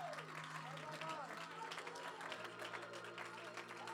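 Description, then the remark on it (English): A large crowd claps loudly and continuously in a fast, steady rhythm during praise and worship, layered over sustained music, with a voice carrying through the noise. “You're not clapping for me. You're not even clapping for the music, but you're clapping for the potential that is locked within your praise”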